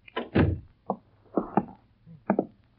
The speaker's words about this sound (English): Shut the door.